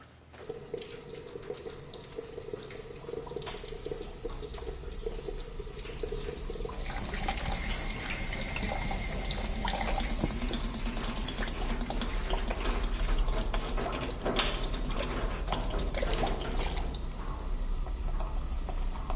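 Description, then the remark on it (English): A steady stream of toxic chemicals pours and splashes for about twenty seconds, being dumped into the Han River, growing fuller and more gurgly as it goes, with no one talking. “So, start pouring.”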